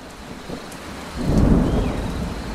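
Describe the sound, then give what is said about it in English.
Steady heavy rain pours down in a rainforest in South America, joined about halfway through by a deep, swelling rumble of thunder that rolls on loudly to the end. No voices. “Wow, listen to all that rain come down.”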